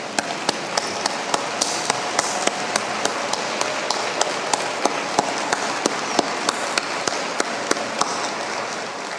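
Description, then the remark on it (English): An audience gives a round of applause for its children's workers, a dense, sustained wash of clapping, with a steady, evenly spaced beat of sharper claps cutting through for about nine seconds. No one speaks. “Let us give these guys a great round of applause.”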